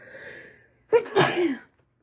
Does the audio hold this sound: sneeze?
yes